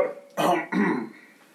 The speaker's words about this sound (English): He steps up and he coughs into a loudspeaker.